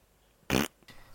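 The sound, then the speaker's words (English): A single loud, short fart bursts out, brassy and buzzy, followed by a fainter, softer trailing puff; no voices accompany it. “And then she farts.”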